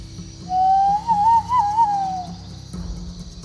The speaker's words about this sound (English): As Merlin reached a fork in the path, he pulled up on his reins. Then he whistled into the mist.